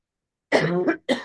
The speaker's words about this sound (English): coughs his guts up